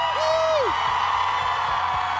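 A crowd packing an outdoor plaza cheers in the cold on a Thursday morning, a steady loud roar of many voices with a high whistle or whoop rising and falling near the start.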